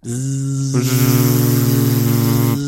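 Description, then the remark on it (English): A voice imitates a machine switched to its low setting, a low, steady hum holding one droning pitch for about two and a half seconds, growing louder and slightly buzzier partway through with a faint pulsing wobble. “The low setting seems to cause the machine to hum a bit, but that's all.”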